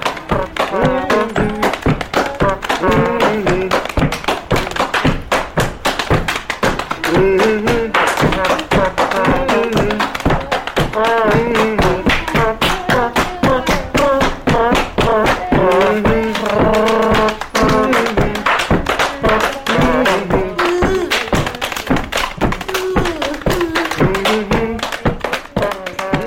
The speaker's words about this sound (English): using tools and buckets and just playing the body. It's called hand bone.